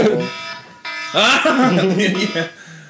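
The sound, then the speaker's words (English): A computer alarm sounds with a steady, buzzy electronic tone that pulses and repeats, fairly loud, while voices talk over it. “The PC alarm just went off.”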